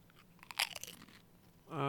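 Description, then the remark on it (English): A loud crunch of a pizza-flavored Pringles chip being bitten into a microphone, a quick cluster of sharp crackling snaps that fades out, followed by a voice starting to speak at the very end. “That was a very satisfying crunch on the microphone.”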